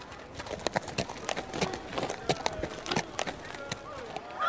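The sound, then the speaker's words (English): A horse's hooves clip-clop in a quick, uneven rhythm, a steady run of sharp knocks that goes on throughout, slightly stumbling rather than evenly paced. “Is that horse still drunk?”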